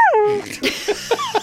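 A small dog lets out a high, falling whine, then a few short, sharp yips in quick succession, close by and fairly clear with no talking over it.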